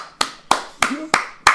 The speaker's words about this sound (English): Thigh clap! Thunder clap! Oh, when I was bigger, you could hear them slap together.